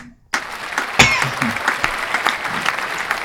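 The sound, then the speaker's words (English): A crowd bursts into a full round of applause, a dense, steady patter of many hands clapping that starts abruptly and keeps going strong for about three seconds. “Ladies and gentlemen, I'm going for the full round of applause.”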